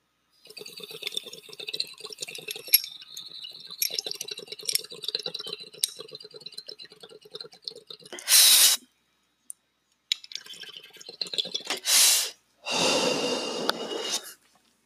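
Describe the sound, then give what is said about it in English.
Steady bubbling and gurgling of water through a water rig as someone takes a dab of God's Gift, running for about eight seconds, broken by a few sharp hissing bursts of air and a long, loud exhale near the end. “I always have to take a dab with you guys. So here goes.”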